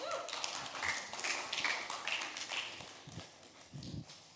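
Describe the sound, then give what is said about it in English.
A small audience gives a thin, scattered round of hand claps to welcome a person invited up. It is a handful of light, irregular smacks over about four seconds, with faint high chirping tones in the background and no one speaking. “That was a small clap.”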